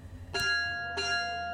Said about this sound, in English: It was late February when the expedited bell tolled dolefully through the prison. Snow was falling in the yard where Callahan marched with his fellow prisoners during the daily exercise routine when the bell tolled.